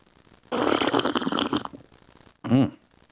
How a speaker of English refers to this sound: Short sip. I had the tilt on a little high there. A little floodgate action. It's still good because you know what? It's black powder. Black powder coffee. That's what's in the cup Monday through Friday.